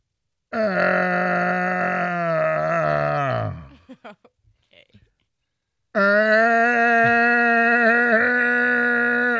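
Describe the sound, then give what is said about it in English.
A voice, using a coffee cup for acoustics, imitates a Lightning hockey goal horn with two long, loud, buzzing blasts at a steady pitch. The first sags downward and breaks into brief sputters before a pause, then the second blast holds steady. “I'm going to try to make an old prostitute moan that sounds like that could be a lightning horn.”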